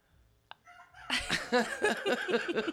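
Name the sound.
rooster crowing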